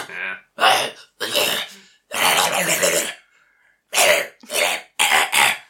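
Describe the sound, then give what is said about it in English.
A person imitates Star, a dog, coughing up blood: about seven harsh, raspy hacking bursts in an uneven rhythm, loud, with a short pause partway through. “And Star starts coughing up blood.”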